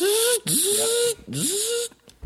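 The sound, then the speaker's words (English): A voice imitates a robot with two buzzy, mechanical phrases, each swooping up from a low pitch into a steady whine over a harsh hiss, separated by brief pauses. “Here's how I would have done robot.”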